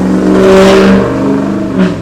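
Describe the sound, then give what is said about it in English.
A car engine revs hard and loud, its strained roar rising and shifting in pitch as the vehicle passes by, with no talking over it. “Somebody has a really tiny pee-pee and decided to light up his car on the way up to hell.”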